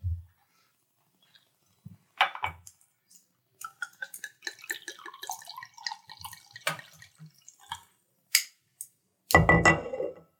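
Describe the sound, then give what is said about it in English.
Liquid trickles and splashes into a glass, with gurgling drips and a few light clinks, ending in a brief louder rush of pouring; no one speaks. The drink is an alcoholic brew made with brown sugar and dates, about 14% alcohol. “Here, pour yourself.”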